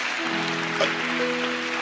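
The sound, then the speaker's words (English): A crowd claps for a woman's evangelism work in a steady, dense wash of applause while sustained musical notes hum underneath, with no one speaking. “Can we clap for this?”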